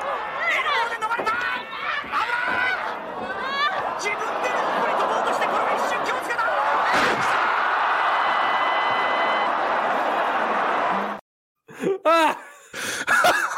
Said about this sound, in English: Oh God! It was a suplex into a into the exploding barbed wire. I literally leaped out of my chair when I was watching this.